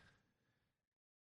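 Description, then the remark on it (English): A single sneeze bursts out sharply and then fades over under a second, followed by silence. No one speaks. “Bless you.”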